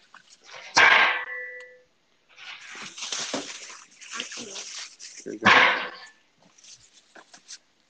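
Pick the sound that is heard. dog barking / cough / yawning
dog barking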